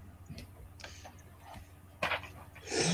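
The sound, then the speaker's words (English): A single sneeze bursts out near the end, fairly loud, following a quiet stretch of faint clicks and a short breathy rush just before it. “Bless you.”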